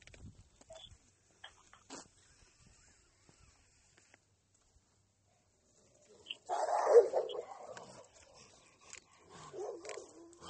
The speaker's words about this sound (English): Shoot some more dogs. Bork, bork. Bork, bork, bork.